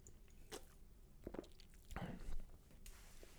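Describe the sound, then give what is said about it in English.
A quick sip of a drink: soft wet mouth sounds, a brief slurp and a swallow with faint clicks, quiet and without any talking. “I'm going to have a sip real quick, and then we're going to have a very serious talk.”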